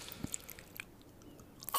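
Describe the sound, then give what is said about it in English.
A woman in a YouTube video bites and chews food, with a few sharp, crunchy bites spaced out between softer, wet mouth sounds. Quiet throughout, with no talking. “You can have the first bite. Oh God, that is not a pleasurable sound.”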